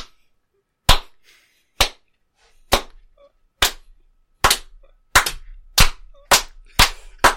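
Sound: slow clap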